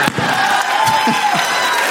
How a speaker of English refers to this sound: Don't encourage that. No more cheering. No. Stop your cheering. Don't get louder.